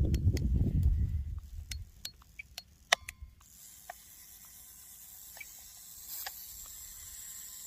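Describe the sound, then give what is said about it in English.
A mechanical spring unwinding in an anti-tank mine after a key is inserted in the top: a burst of quick, irregular metallic ticks and clicks, then a steady thin high hiss with a few scattered clicks, no voices. “The spring decompressing sucks.”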